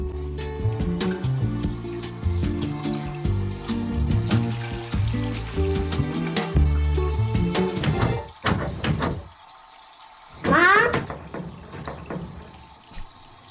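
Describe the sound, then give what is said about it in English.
A child gives a few quick, fairly loud knocks on a bathroom door after a stretch of music, followed by a brief pause and a short rushing, scraping sound. “And then the kid knocks on the door to find out if she's in the bathroom.”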